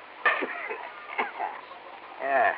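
chickens clucking

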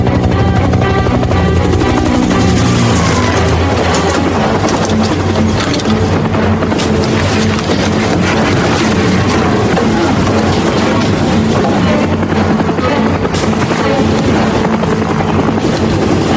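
helicopter in flight

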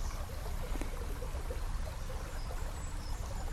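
river water flowing

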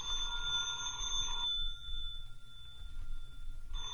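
telephone ringing

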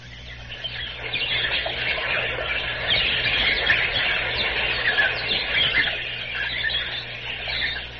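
birds chirping

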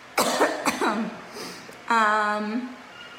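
coughing

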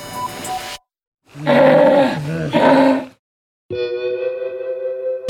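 sea lion roaring

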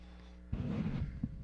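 sneeze

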